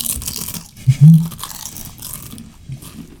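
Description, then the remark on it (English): Loud crunchy chewing into a microphone, with irregular crackling bites running continuously for a few seconds and a heavier thud of jaw noise near the start. No one talks. “I want a good crunch going.”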